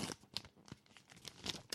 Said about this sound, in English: Here we go. Rippity, let me do my paper sound effects. You do it.